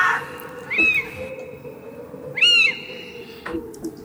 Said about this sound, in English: I think that's an owl flying over us. It's a screeching owl.